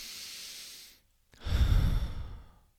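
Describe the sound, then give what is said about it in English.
A long, airy inhale drawn in steadily, a brief pause, then a fuller, louder exhale, like a slow deep breath with no talking. “Take a deep breath.”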